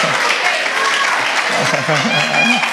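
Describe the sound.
An audience claps steadily in a dense, even wash of applause during a bilingual English-Spanish Christian teaching about Jesus, with a voice speaking faintly underneath toward the end.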